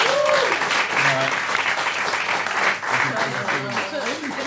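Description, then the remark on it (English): An audience claps steadily for several seconds for the team Fight Club 7, on 27 points, a dense, even wash of applause with scattered voices calling and cheering underneath. “27 points, give them a round of applause, Fight Club 7.”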